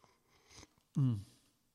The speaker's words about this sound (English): Anyway, sip of coffee. Sorry.